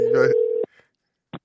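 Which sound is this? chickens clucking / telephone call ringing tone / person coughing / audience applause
telephone call ringing tone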